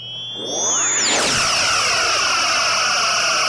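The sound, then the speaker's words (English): A Star Trek phaser firing: high electronic tones glide downward, then burst into a loud, sustained, buzzing beam whine rich in shimmering harmonics that holds steady to the end, with no voices. “Let's give a warm round of applause and a couple of phaser fires.”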